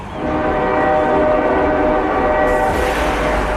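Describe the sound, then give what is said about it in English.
A loud train horn blares steadily over the heavy rumble of a passing train, continuous for several seconds with no one talking. “LXD Sounds Train.”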